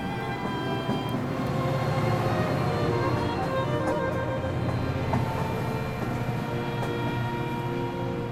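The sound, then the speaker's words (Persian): A steady mechanical rumble of a train arriving at a station, with a low droning hum and faint tonal whines, holding an even loudness throughout with no voices. “بالاخره ایستگاه من هم رسید، دیگر باید پیاده شوم.”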